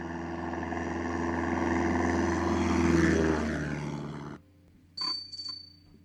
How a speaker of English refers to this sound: How long does that go on? It's already too long. The plane's taking off the decks of the aircraft carriers?